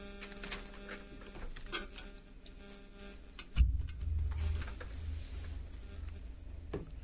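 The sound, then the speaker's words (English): A steady electrical hum with a buzzing, clicking texture from interference caused by the phone used for the broadcast runs throughout, growing into a louder low rumble about halfway through. No one speaks. “we have a hum that's coming in.”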